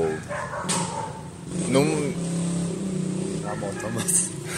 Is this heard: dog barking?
yes